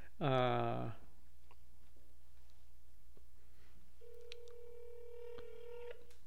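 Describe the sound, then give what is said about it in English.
A short, loud vocal burst opens, then after a quiet pause a steady electronic phone tone hums for about two seconds, like a call dialing out and ringing, as someone phones their father. “Phone ringing noise.”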